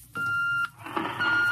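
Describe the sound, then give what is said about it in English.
An intercom call beep from the radio room of the Star Cloud: one steady, mid-high electronic tone lasting about half a second, followed by a wash of hissy noise with faint warbling tones. “That's the radio room now.”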